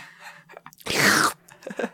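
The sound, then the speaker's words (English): A voice imitates eating grubs with a loud, wet slurping noise that swells for about half a second, framed by softer smacking mouth sounds. “And then made this slurping noise.”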